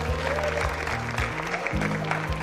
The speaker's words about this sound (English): Come on, clap your hand. Get on your feet.